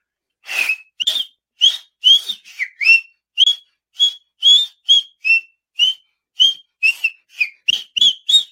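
A person whistles a rhythmic, chant-like tune of short, sharp, high notes in repeating groups, close and fairly loud, with no talking underneath.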